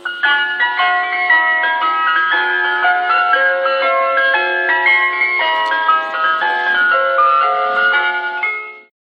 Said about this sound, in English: So let's just have a listen to some ice cream van music in case people aren't aware of it.